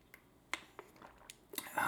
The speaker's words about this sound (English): Swig of water real quick.